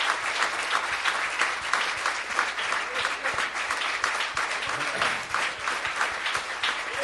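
A church audience applauds steadily for several seconds for a couple celebrating 56 years of marriage, a dense wash of many hands clapping at once with no pauses, moderately loud throughout.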